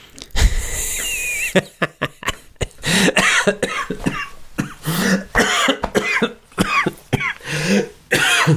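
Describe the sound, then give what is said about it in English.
A loud run of harsh coughs from a person laughing and coughing comes in rapid bursts, broken by short gasps and breathy voiced sounds, continuing for several seconds without any speech. “comment is making me laugh and cough.”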